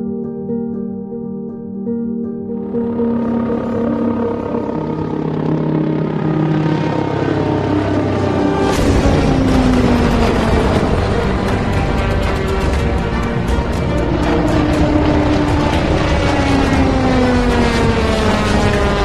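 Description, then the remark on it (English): An X2 compound helicopter with a pusher propeller on the back runs up, its steady harmonic rotor and engine whine swelling into a loud, sustained roar with a rising buzzy pitch. No one speaks. “The biggest difference between a fundamental, like, traditional helicopter and the X2 is that prop that's on the back, right?”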